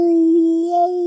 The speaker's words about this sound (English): We've got wolves. Not just any old wolf. Oh, no, no. We've got werewolves. Werewolves in Denbighshire, in North Wales.